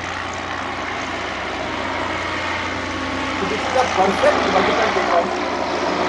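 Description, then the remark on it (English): Propeller engines of a three-engine airship in flight, tilted forward after climbing to altitude, drone steadily and loudly, a broad continuous roar that swells slightly toward the end, with faint voices murmuring underneath. “Once it clears the ground and reaches a decent altitude, the engines are again tilted forward, then she starts flying like a normal aircraft.”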